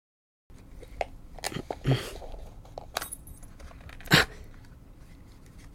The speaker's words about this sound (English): Is this for real? It's a dog tag with my name on it. Flip it over. It says my forever home on it. With the address.